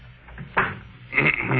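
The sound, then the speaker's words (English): A door thuds shut with a sharp knock, followed by a second scraping, creaky knock as it settles into the frame. “Close the door behind you.”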